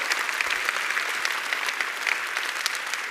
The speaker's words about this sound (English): So I want to give a shout out to all the people on our staff and the team members who put that on. Can y'all just give them a real round of applause for doing it?